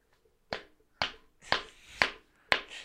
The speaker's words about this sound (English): Exhibit A. I'll hide the logo. Look at this cheap can. This can... Look at it. Look at it. It just, without anything, it just bends.